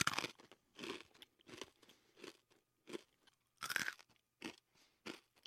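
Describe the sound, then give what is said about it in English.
Loud crunching of a dry, brittle protein cake being chewed, with about eight sharp crunchy bites in an irregular rhythm and short quiet gaps between them. No one speaks. “A year later, we were all eating three protein cakes a day. There was nothing else. Salty, crunchy, and bland.”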